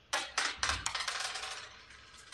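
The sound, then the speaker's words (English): A single die is rolled to choose a writing genre, clattering onto a hard surface with a few sharp knocks, then tumbling in a quick run of bright, rattling clicks that slowly fade, landing on six. No one speaks. “So roll the dice first to find out what genre we'll be writing in.”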